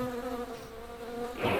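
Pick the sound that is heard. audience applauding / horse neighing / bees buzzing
bees buzzing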